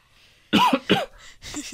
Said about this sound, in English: Whenever I try to do like a … or a … impression, my vocal cord's first instinct is to cough.